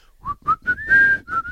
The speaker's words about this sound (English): The best and the worst part is the whistle. That will be stuck in my head forever. I can't whistle very well.